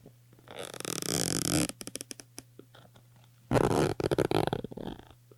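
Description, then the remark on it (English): A zipper is pulled twice, each a rasping, ratcheting burst about a second long, followed by a few scattered clicks and a faint steady hum underneath. “There's a zipper.”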